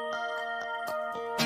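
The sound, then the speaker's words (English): Chiming harmonic guitar notes at the beginning of a song are picked in a steady rhythm, about four per second, each bright attack ringing into a sustained, bell-like shimmer. The notes are moderately quiet and play alone without any voices. “I think that's either a tapped, clean, natural harmonic guitar or a artificial harmonic done by tapping as you pick.”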